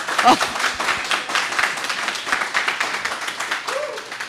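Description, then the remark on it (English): A sustained applause sound effect, piped in during a live recording with NCSY advisors at Yeshiva University: many hands clapping at once in a dense, steady patter for several seconds, with a faint voice or cheer briefly rising above it. “I appreciate you piping in that applause sound.”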